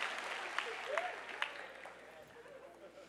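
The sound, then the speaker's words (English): A crowd of people clapping their hands to show their love for Jesus, in a steady, dense wash of applause with a few sharper claps standing out, faint voices calling out underneath, tapering slightly toward the end. “Clap your hands if you love Liv and Jesus in Liv, and God's living all over Jesus at Liv.”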